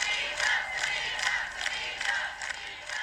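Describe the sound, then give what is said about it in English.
A large crowd in Ireland in 2018 chants 'Savita, never again' in unison, voices rising in steady rhythmic bursts roughly twice a second, loud and continuous throughout with no single voice standing out. “So while the crowd chanted Savita, never again, we really, really, really meant that.”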